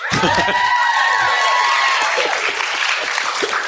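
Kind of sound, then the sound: crowd, audience cheering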